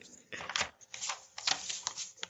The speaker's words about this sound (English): And then there's also, hold on, let me flip through my notes real quick so I can make sure I get this right.